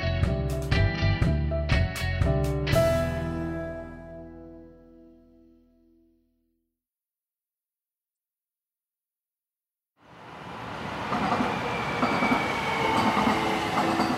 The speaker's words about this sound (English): When the Gold Line train arrives at the Highland Park station between downtown LA and Pasadena, passengers get off in a rapidly gentrifying part of Los Angeles.